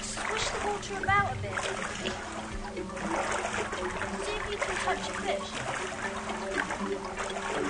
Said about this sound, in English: Every hand movement is being recognized. Being able to touch fish. Being able to swish the water with our hands.